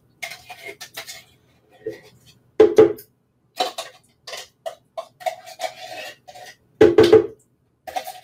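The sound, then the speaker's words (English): Pumpkin scooped into a blender: irregular scrapes and soft clinks of a utensil against a container, with a couple of louder thumps as the mash drops in. “And then I'm gonna put all of my pumpkin into my blender.”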